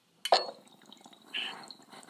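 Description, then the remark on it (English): Water drips into a glass thermal banger while its inside is being cleaned: a sharp splash-tick, then a second softer burst about a second later, with a faint hiss trailing. No one speaks. “Don't put the water on here when it's fucking red hot and shit.”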